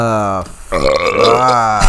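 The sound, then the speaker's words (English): A loud, drawn-out burp, croaky and voiced almost like speech, with a brief pause partway through before it rumbles on again. “Bro, I love burping and I love keg stands.”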